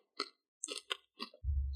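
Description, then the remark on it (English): Loud crunchy chewing in several irregular bursts, each a crisp crackle, followed at the end by a steady low rumble. No one speaks. “It's so loud chewing, I can't hear myself think.”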